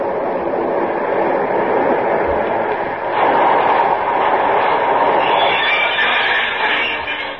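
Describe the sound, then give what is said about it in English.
A six-car local train rumbles steadily with a broad, loud roar and rushing hiss as it pulls into a platform, rising in intensity midway as it rolls in, with a brighter metallic screech emerging toward the end as it slows. “Wait a minute. Here comes the local.”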